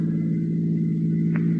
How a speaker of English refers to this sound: Sounds like cars. Probably police cars. We're just about to be sensationally rescued, just like fiction.